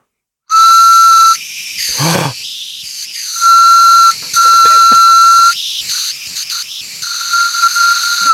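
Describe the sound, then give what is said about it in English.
A homemade carrot whistle plays a loud, breathy tune of shrill notes, mostly holding one steady pitch, broken by short gaps, airy hisses and brief wavering sputters, with no talking. “Yeah, baby, I made a shit carrot whistle.”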